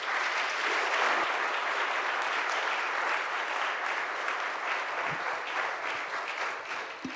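A crowd at a Town Hall Seattle event at University Lutheran applauds to welcome the speakers. The applause lasts about seven seconds, a dense, even patter of many hands clapping at once, fairly loud and sustained without pause.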